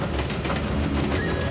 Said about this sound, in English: It was a breezy afternoon on the island of Sodor when a mysterious new engine purred smoothly into Knapford Station. No one on Sodor had ever seen an engine like him before.